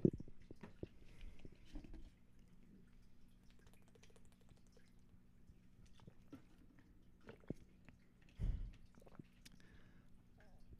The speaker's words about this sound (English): I need to take a drink of water.